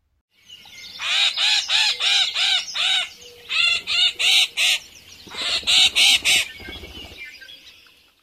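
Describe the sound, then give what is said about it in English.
A female yellow-headed blackbird sings a harsh, buzzy series of rapid repeated notes in three bursts, loud, with no one talking over it. “Here is a female yellow-headed blackbird song.”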